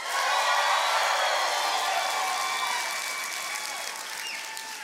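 A crowd bursts into loud, sustained applause mixed with whoops and high-pitched cheers, the clapping a dense continuous roar that eases slightly toward the end.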